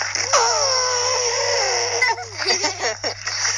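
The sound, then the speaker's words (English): A high voice imitates an elephant's trumpet: one long, wavering, drawn-out call, then a few shorter, broken bursts, steady and fairly loud throughout. “The really big ears and a long nose. And they go like...”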